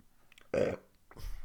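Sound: burp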